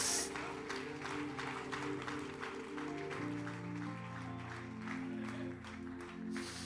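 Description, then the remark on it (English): An audience at a church service claps together in a steady, rhythmic beat, loud, over sustained organ or keyboard chords that shift partway through. “Can somebody clap a little louder?”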